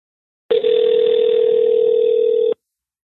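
A steady electronic phone ringing tone of an outgoing call sounds loud for about two seconds, then cuts off abruptly, like a single ring of a call connecting. No one speaks.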